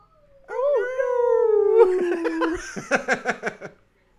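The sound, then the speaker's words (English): A poodle howls: one long, drawn-out note that wavers and slowly sinks in pitch, then breaks into a quick run of short, yipping bursts before fading out. “I don't know if I've ever seen a howling poodle.”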